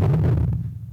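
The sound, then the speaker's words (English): A deep, breathy rumbling growl representing one theory of how a T-Rex sounded, a low throaty drone with airy hiss on top that fades over about a second, with no talking. “Who says that? Heavy breathing?”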